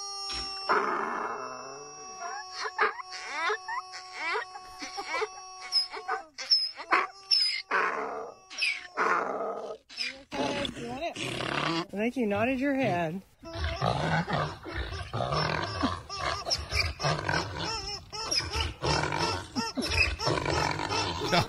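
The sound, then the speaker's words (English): A donkey brays loudly in a long run of rasping, see-sawing honks that rise and fall in pitch while playing with a rubber chicken it was given. A person speaks briefly over the noise. “THE HAPPIEST DONKEY YOU'LL EVER HEAR”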